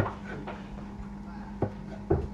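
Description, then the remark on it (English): A few sharp knife chops land on a cutting board at uneven intervals as food is chopped while cooking, moderately loud, over a steady low kitchen hum. “Now I'm just chopping all off.”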